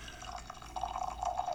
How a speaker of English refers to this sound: And as always, when we get started with our show, we always start off getting together and pouring a cup of coffee. So we'll get that coffee going.